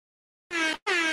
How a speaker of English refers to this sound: Oh, come on with the air horns.